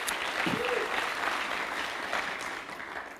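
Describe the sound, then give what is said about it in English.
Sustained applause from a large crowd giving a clap offering to the Lord, dense steady clapping filling the room at a fairly loud level, with a faint voice briefly rising above it early on. “Come on, give the Lord a great clap offering.”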